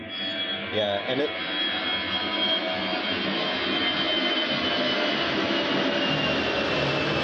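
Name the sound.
low-flying airplane passing overhead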